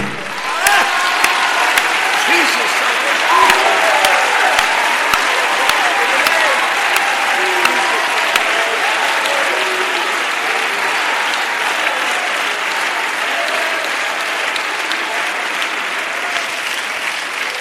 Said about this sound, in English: I feel like clapping.